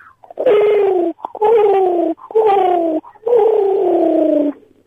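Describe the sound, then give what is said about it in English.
A person does an impression of a pigeon cooing: four loud, drawn-out, throaty coos with a slight downward slide, each about a second long, separated by short pauses. “It was a pigeon.”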